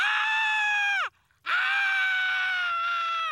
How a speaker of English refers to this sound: What the hell is that noise? The caterpillar is screaming.